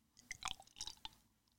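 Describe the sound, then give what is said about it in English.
Thick beer, thicker than the previous one, pours with a few soft, wet glugs and bubbly clicks over about a second and a half, quiet, with no talking. “It's pouring so smoothly.”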